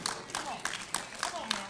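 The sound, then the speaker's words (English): A group at a church service claps in a slow, steady rhythm, about six beats spread evenly, fairly soft, with a faint murmur of voices underneath. “See, it's even hard to clap, amen?”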